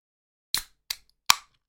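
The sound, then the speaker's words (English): Opening a grape-flavoured Japanese drink: three sharp, snappy pops or clicks in quick succession, the last slightly loudest, with silence between them and no talking. “I'm going to open mine just now and give it a good sip.”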